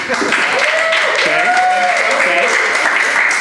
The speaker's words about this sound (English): Before we get started, just curious, round of applause if you've heard the show before.